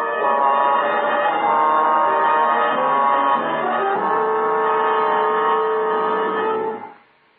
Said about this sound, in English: Except that every time the agent approached a new building, an alarm bell rang.